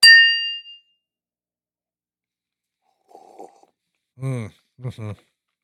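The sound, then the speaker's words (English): Glasses clink once in a toast, a bright ring that fades over about half a second. A quiet pause follows, then a few brief voice sounds. “So anyways, all right, well, cheers. Bottoms up.”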